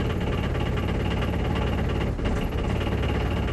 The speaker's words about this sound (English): When Daddy started the engine, it spluttered. I'm thinking it's going to fail.